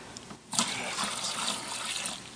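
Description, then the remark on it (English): Water pours steadily for a couple of seconds, a continuous splashing gush that starts after a brief quieter moment and keeps an even, bubbling flow to the end. “Let's add some water, man.”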